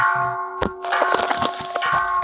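A Buddhist bell chime from an Android app called Buddhist Bell rings with a steady, sustained metallic tone that hangs throughout, while several sharp clicks and clattering knocks sound over it.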